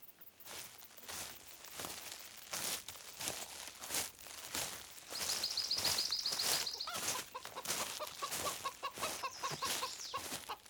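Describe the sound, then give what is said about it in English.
A chicken clucks steadily, a rapid series of short, sharp clucks broken by a higher, drawn-out squawk midway through, with faint rustling in the background. “Do you see it? The chicken?”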